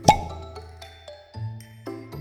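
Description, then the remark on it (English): A sharp, bright pop at the start as an underwater bubble, caught in Krish's pincers, bursts right on his face, followed by soft tonal notes and low sustained hums with no talking. “The first bubble he caught burst right on his face.”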